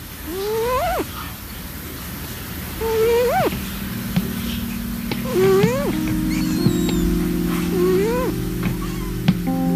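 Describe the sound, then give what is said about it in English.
A cat snores with squeaky, whistling breaths that rise in pitch, four of them at a slow, steady pace, over a faint low hum. “Especially the cat snoring.”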